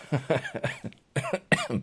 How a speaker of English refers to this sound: And yes, I'm coughing.